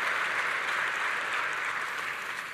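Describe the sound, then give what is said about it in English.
Steady applause from a crowd at Pathfinder Church for the Illuminations team, a dense wash of many hands clapping at once, holding at an even level throughout with a slight easing toward the end. “Yeah, clap for them too.”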